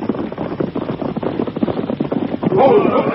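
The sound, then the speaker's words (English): Several horses carrying approaching riders, with the sheriff riding in front, gallop in with a steady, rapid drumming of hooves that grows louder, rising into a busier rumble near the end. “Here they come. It's all right. That's the sheriff riding in front.”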